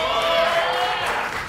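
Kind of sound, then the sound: crowd, crowd cheering and applause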